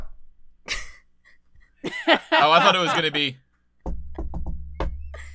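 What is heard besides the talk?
knocking on a table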